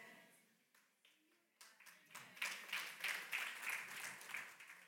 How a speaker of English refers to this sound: That should have been more than 10 of you clapping.